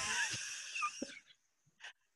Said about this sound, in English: What's that noise? It might be the dog snoring next to me.